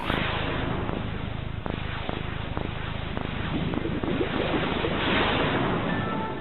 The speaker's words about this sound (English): Original Xbox had this sort of, when you started it up, there was this sort of whoosh of power, this idea that this box contained all this green energy and machinery.